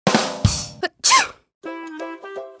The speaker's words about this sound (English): When we sneeze, it's because our nose is trying to get rid of the germs or dust that have gotten into our nose. When someone sneezes, you can say, Gesundheit.